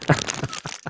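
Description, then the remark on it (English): Crinkling paper: a quick flurry of dry, rustling crackles in several uneven bursts, bright and hissy, heard on its own with no talking, lasting under a second. “Oh, where they like listen to crinkling papers?”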